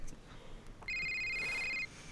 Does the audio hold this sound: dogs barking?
no